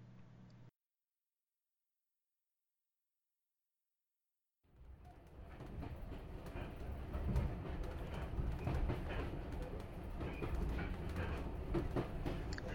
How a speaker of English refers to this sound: It has been a while since I last travelled by steam. I do miss these old-style coaches. They're so much more comfortable.